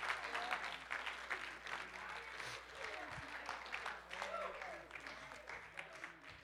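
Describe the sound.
An audience, standing, claps their hands in praise, a dense, sustained patter of many hands that stays steady and fairly loud throughout, with faint crowd voices mixed in underneath.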